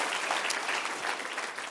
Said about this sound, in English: Come on, give them a big, huge round of applause in all the locations. You have phenomenal pastors here.